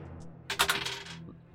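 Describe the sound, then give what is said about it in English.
A quick rattling clatter of two dice tumbling across a hard tabletop during a game, lasting under a second, with no voices. A faint low hum sits underneath. “So that'll give you an extra dice on your roll.”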